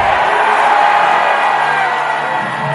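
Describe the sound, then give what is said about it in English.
A church audience shouts together during a prayer in a loud, sustained roar of many voices, whoops and yells blending into one continuous wall of sound that holds steady for a few seconds. “I don't know the way you are shouting, amen. Can you shout amen?”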